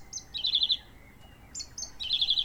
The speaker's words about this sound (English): A thrush. I would so like to be able to recognise birds by their song.